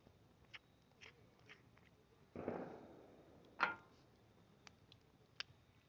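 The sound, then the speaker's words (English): Fireworks set off by people around the area: scattered faint pops and crackles, a rumbling boom that trails away, then one sharper, louder bang, with no gunshots and no one talking. “But all you're hearing around us right now is all fireworks.”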